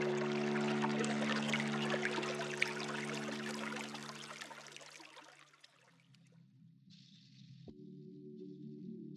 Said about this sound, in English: As long as you hear the water, keep it in your hands.